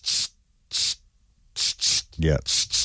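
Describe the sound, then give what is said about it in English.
A voice imitating an aerosol snow spray with a run of short, sharp hissing bursts, two spaced apart and then several in quick succession, with a brief voiced sound partway through. “which would be the snow spray.”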